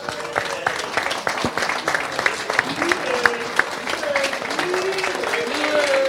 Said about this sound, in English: Can we have a bit of an applause for that night, really?